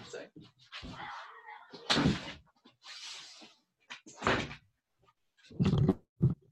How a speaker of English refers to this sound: Hang on, I'm just going to shut my door. Sorry.